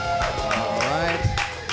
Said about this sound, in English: Clap for them.